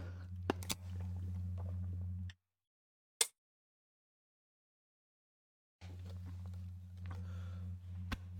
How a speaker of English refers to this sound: Good burp. Those are good to shotgun too. That's the best seltzer I've ever shotgun.